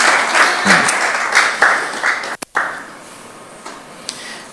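Sustained applause from a crowd fills the room, dense clapping that briefly cuts out, then resumes and gradually thins toward the end.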